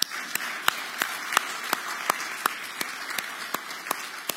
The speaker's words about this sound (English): So that's another thing I think we can clap for.